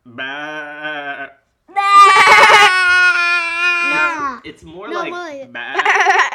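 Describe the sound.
A person loudly imitates a sheep with several wavering, nasal bleats, the longest one stretched out and quivering, followed by shorter warbling cries.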